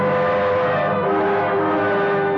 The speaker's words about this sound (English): To make sure we were both thinking of the same thing to do, I followed her in the dark, watched her get into the car I rented from you, and drive off.